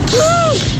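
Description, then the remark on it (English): A person imitates an elephant trumpeting in a WhatsApp audio message: one short, brassy, wavering call that rises and then falls in pitch, heard over a steady background hiss. “my mom thinks that elephant sounds like this.”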